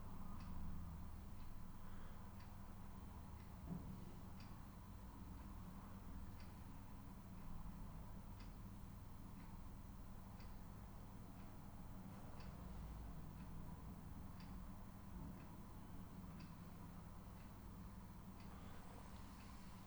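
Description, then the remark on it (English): A clock ticks steadily about once a second, faint but regular, over a constant low rumble of traffic. No one speaks. “There's tiredness and alertness and traffic and the ticking of the clock and the sound of my words.”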